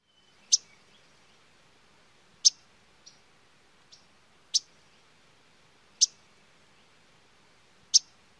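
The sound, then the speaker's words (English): A series of sharp, high, dry chip notes from an Audubon's yellow-rumped warbler, spaced about every second and a half, with a couple of softer notes in between, set against near silence. “First, the yellow-rumped Audubon's.”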